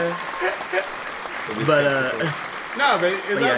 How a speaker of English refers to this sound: I need a big clap for that one.